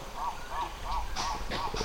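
A run of repeated, rhythmic bird calls, about five quick honking notes spaced evenly, with scattered chirps and rustling noise behind them, on a riverbank in the Chinko region where monkeys and birds live.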